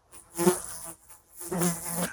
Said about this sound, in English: Fly buzzing around on the camera?